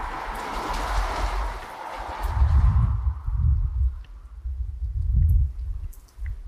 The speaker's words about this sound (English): The rain is now picking up quite a bit. And the wind gusts just bend these huge tree limbs like they're nothing.